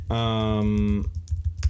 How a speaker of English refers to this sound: Do you hear me typing?